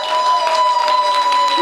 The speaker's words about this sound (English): Everyone put your hands up. Hands in the sky. Hands in the sky. Hands in the sky. Clap for 5 seconds. Give him all the praise you can.